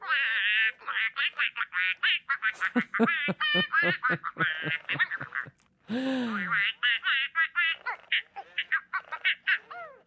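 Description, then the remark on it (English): A toy duck, switched to its silly mode with a silly card, lets out a loud, rapid stream of squeaky quacks and giggly, chattering noises, pausing briefly partway through before the silly babble resumes. “You know, I think duck feeling silly might be a good mode to try.”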